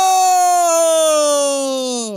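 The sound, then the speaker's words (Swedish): A voice imitates a circuit-training coach's loud, drawn-out shout of "Go!": one sustained, strained yell held steady for about two seconds at a high pitch, then sagging slightly and cutting off. “Så här skriker han.”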